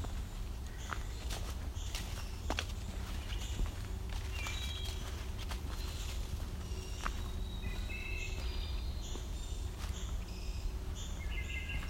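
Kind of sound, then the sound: bird, wood thrush singing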